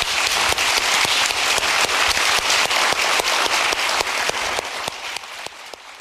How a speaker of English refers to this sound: But before he leaves, let's give him a great round of applause.